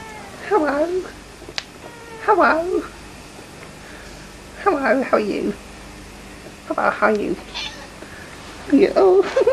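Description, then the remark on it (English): A female cat meows about five times, fairly loud, with drawn-out wavering cries spaced a couple of seconds apart over a quiet background. “Hello, footy cat.”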